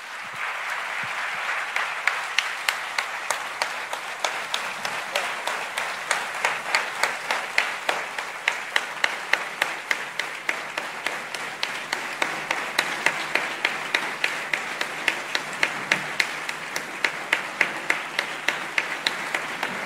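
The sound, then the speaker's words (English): A crowd applauds steadily for the whole stretch, clapping for a minute to acknowledge two gentlemen, many hands clapping in a dense, even patter with some sharper individual claps standing out, and no voices over it. “Please join me in clapping for a minute in acknowledging these amazing people.”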